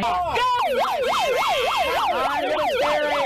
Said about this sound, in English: there was counter protesters there. Okay, so a guy and a lady had a bullhorn, put it on siren, freaking this far from my freaking face.